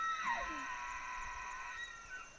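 A single elk bugle in Benezet, Pennsylvania: a high, whistling call that opens with a sliding squeal, then holds a long, steady, shrill tone for nearly two seconds before fading, heard alone.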